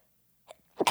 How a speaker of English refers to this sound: Oh my God, I'm sneezing, coughing all over the place. Jesus Christ. God bless this mic.